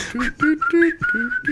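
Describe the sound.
A short whistled melody, a few sustained bright notes in a bouncy, tuneful rhythm, played clearly and fairly loud with no talking.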